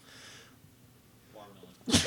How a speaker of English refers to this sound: I'm going to sneeze, I think.